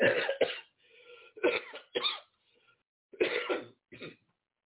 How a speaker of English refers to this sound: I have to cough every now and then, but when I tell you, it is so much better than it was. Because even the coughing a little bit, if I cough, I get out of breath.